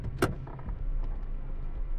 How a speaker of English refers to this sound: After a while, you hear a car door open.